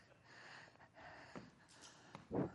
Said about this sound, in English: Man, I'm in shape. Huh? I'm breathing hard. I just walked from there to here.